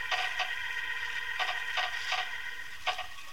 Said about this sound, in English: He's taken the lid off the box. I can hear the nails squeak.